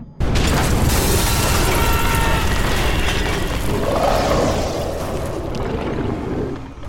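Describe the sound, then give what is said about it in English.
A loud explosive crash of splintering rotted wood as a massive shape bursts from beneath a staircase, followed by several seconds of dense crackling and rumbling debris that slowly thins out, with no voices. “A massive shape exploded from beneath the stairs, a blizzard of rotted wood and splinters.”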